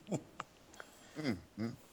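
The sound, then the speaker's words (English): A pet bird squawks in short, scratchy bursts, a few calls with small clicks and chirps between them, and no one talking. “Sassy bird.”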